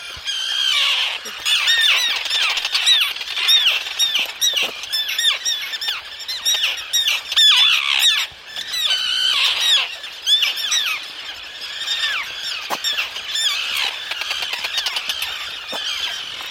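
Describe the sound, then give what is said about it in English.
A dense chorus of aggressive seabirds in a colony on Great Gull Island squawking and screeching nonstop as researchers walk on the island, the birds swooping down to attack; many harsh overlapping calls, loud, with no talking. “So, to avoid being pecked at by a sharp beak, each researcher wore a hat that sported a long upright stick, so the birds would peck at the stick and not us.”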